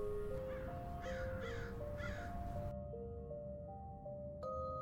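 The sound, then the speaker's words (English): Three harsh crow caws ring out in quick succession over a low, steady musical drone that carries on after the birds fall silent. “Had the crows foreseen the death of someone?”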